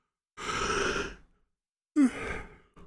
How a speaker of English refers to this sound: Excuse me. My apologies, yawning. But it is early in the morning